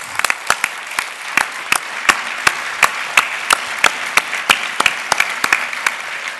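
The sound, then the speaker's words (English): A crowd applauds steadily for several seconds, a dense wash of clapping with sharper individual claps popping out irregularly, moderately loud, with no voices standing out. “My applause to you.”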